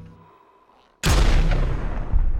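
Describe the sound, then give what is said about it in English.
After a second of near silence, a sudden loud blast of gunfire erupts in a kitchen and keeps roaring, with a few sharper cracks standing out within the dense, booming barrage. “Multiple gunshots ring out in the kitchen.”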